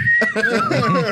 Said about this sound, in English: …'s walking away, whistling.